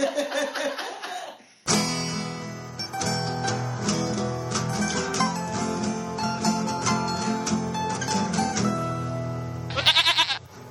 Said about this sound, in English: Goats. Sound cue.